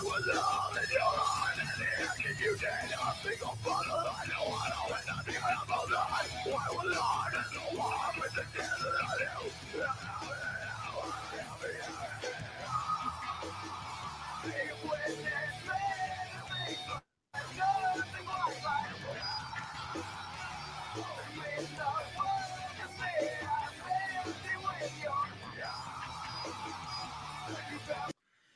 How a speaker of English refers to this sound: Oh, man, that bass. Oh, dude. Dude, check this out. This scream section, though. This made me want to scream in a band.